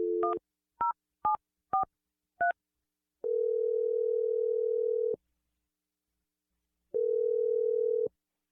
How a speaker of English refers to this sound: Oh. And I'll dial the number, let you make your awkward Tuesday phone call. You ready? Yeah. All right, here we go.